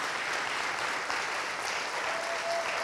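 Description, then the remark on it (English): Sustained, dense applause from a large church audience standing to its feet, a steady wash of clapping that holds at an even loudness throughout with no voices standing out. “I think you guys should stand to your feet and give them a round of applause this morning.”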